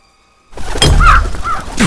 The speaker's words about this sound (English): Oh, Jesus Christ, what was that? A crow hit the window.